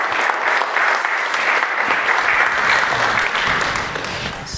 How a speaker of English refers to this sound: What a practical example he gave us, right? Shall we just put our hands together as we just clap for him?